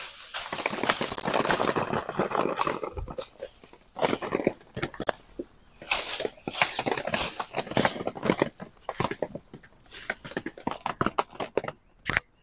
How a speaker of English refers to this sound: I hope you can hear that rain of berries.